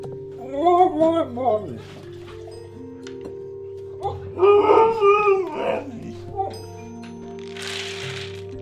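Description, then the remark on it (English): A female dog, Ledge, lets out two soft, wavering whimpering howls at dinnertime, each a couple of seconds long with a pause between, followed by a brief burst of rustling noise. “The only time she ever actually vocalizes is during dinner. And it's a very small vocalization.”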